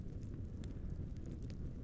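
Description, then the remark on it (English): A steady fire crackles and pops in a library, with irregular sharp snaps scattered over a low, continuous roar. No voices are heard. “But as the pair came to the last words of the last page, the crackling fire began to flicker”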